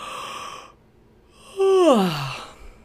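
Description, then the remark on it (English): A breathy inhale, a brief pause, then a loud, drawn-out waking-up yawn whose voice slides from high to low, exaggerated and theatrical, performed by a single voice with no other talk. “When he woke up the next morning, he stretched his arms really tall and yawned.”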